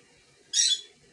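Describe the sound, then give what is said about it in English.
A single short, shrill chirp from a pet bird, fairly loud, with no one talking. “You see my bird cheering also?”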